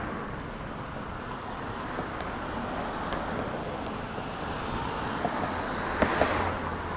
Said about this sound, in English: I see another bus, y'all. Another bus going the other way. That's the number 8. Wow.